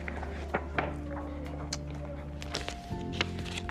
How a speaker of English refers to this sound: Jack heard his parents' footsteps on the stairs.